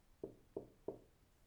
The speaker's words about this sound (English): You rap a couple of times? No immediate response. I knock once more.